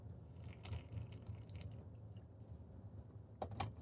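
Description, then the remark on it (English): Quiet sounds of someone taking a quick swig of water, with soft wet swallowing and liquid noises over a low steady hum, ending in a couple of brief louder clicks. “Hang on, let me get a quick swig of water.”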